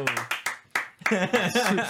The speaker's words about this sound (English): Yes. We're doing our Dungeons and Dragons campaign. Yes. Let's go. Claps all around. Let's go. Hey, let's go.